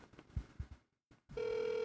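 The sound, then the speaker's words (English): A few soft low thumps, a brief silence, then a steady electronic telephone ring tone starts up and holds, fairly loud, with no one talking. The phone is lying in a dirt ditch where the Guitar Center building was torn down. “Well, oh my God, it's still ringing. Still ringing because it's that phone in that ditch because they tore it down.”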